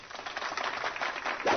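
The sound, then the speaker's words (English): A soft, steady patter of polite clapping, a golf clap from several people in response to first quarter earnings being up 12.5%, continuing evenly for a couple of seconds with no voices over it. “That's worth a golf clap as well.”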